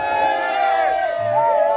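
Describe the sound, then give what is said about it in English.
A crowd of voices chanting together in sustained, melodic tones that rise and fall in pitch, loud and unbroken, as a fishing boat arrives at the shore of a lake while women wait with baskets. “It is a lovely ceremony when a boat arrives at the shores of the lake. Chants are made while women wait anxiously with their baskets.”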